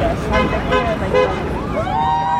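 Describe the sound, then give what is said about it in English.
Several car horns honk in quick succession amid steady traffic rumble on Westminster Bridge in London, as cars pass a picket line of about 50 striking nurses on a freezing, sunny day, followed by a longer sustained horn tone, with a murmur of voices in the background. “There's about 50 people on the picket line when I went, and a lot of honking cars coming by.”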